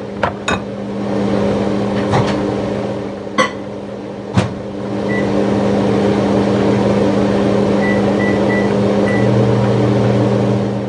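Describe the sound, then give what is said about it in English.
A steady electrical hum drones continuously as a microwave oven melts cheese in a bowl, with a few sharp clicks and clunks near the start and some faint high beeps partway through. “microwave the cheese in a bowl.”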